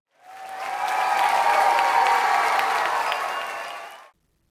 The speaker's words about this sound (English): Okay, let's give him a round of applause, everybody.